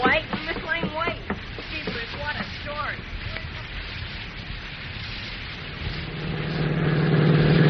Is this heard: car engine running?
yes